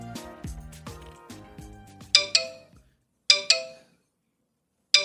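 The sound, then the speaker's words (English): A melodic phone ringtone plays for a couple of seconds, then gives way to bright, chiming text message notification alerts arriving in quick double dings, clear, with no one speaking. “What is going on with my phone? Why am I getting blown up?”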